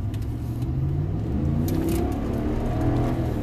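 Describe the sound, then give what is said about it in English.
The engine of a black Ram pickup truck, an eight-cylinder 5.7-liter, revs and accelerates, its low growl climbing steadily in pitch over a few seconds. The sound is loud and continuous, with no talking over it. “Fucking acceleration, my friend. That's how I pull out of Lowe's.”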